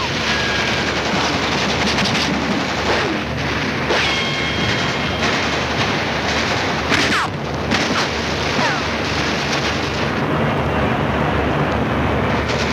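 Loud, dense battle din of enemy machine gun bursts and heavy mortar explosions as troops wade through deep water to the shore, a continuous roar with sharp impacts breaking through over about thirteen seconds.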